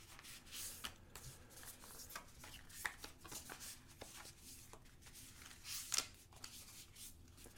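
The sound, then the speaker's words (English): Tarot cards being shuffled, a steady run of soft papery riffles and light taps with a few sharper snaps, fairly quiet, with no talking. “As I shuffle, let's take a deep breath.”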